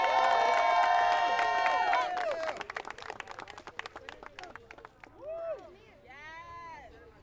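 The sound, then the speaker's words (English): A small group yells and cheers loudly, then breaks into a burst of scattered, fast clapping, followed by a few more rising whoops and shouts as the clapping fades. “Yo, clap it up, 1-0, baby!”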